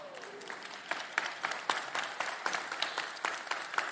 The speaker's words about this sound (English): And if you applaud for 18 years, I think you need to applaud even louder for Pastor Joe Scruggs and his dear bride, Margie, celebrating their 50th anniversary this weekend.